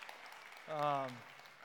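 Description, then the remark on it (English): An audience claps in a steady, dense wash of applause to thank the Lord, while a single voice briefly calls out over it midway through. “Hey, you can continue clapping.”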